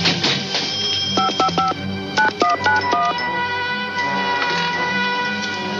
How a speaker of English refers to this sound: with his like super mouse hearing, he hears the tones of the numbers. Oh, right. That the guy dialed. Mystery was solved by hearing the dial tone. The number chimes.